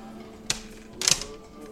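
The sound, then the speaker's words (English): A brief clatter of dice: one sharp click, then a quick rattling burst of clacks a moment later, over a faint low hum, with no voices. “Grab your dice that you have.”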